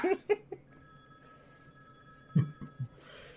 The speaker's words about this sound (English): Fine, I'll ring that phone.